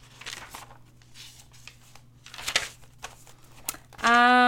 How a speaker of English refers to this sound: Of course I have my notebook with me, because when do I not? Here's some ASMR of me turning the pages.